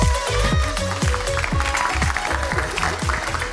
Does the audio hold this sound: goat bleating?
no